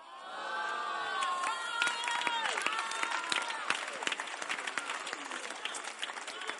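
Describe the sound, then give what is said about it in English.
Sustained applause from an audience, a dense wash of many hands clapping, mixed with cheering voices and whoops rising and falling over several seconds. “Why are you clapping?”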